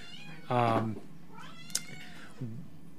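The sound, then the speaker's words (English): A cat meows loudly, one drawn-out, strongly voiced meow followed a moment later by a shorter, lower mew, with a faint background murmur and no clear talking. “Oh my goodness, the cat.”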